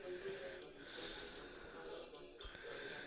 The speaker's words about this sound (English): Do a little dry rip. A little sniff. Gonna hoover the sniff.